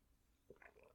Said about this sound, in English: I'm just having another sip of coffee. I need some caffeine boosting.